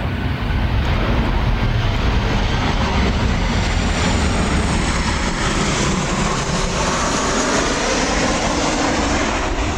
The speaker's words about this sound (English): We're going to pause because we have an airliner flying over, but this is such a beautiful area, so stand by.